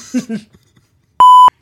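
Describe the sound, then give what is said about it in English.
A short burst of speech cuts off, then a loud, steady electronic bleep sounds alone for about a third of a second, a pure high tone like a broadcast censor beep. “Shit was going to go dark. Lights out. Yep. Beep.”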